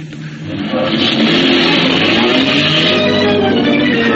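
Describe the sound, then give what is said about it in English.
A car engine roars up quickly and holds at a loud, steady rumble as the car accelerates hard to run down a man standing squarely in front of its radiator. No one speaks. “He was standing squarely in front of the radiator when I got him. Just to make sure, I backed the car over his body.”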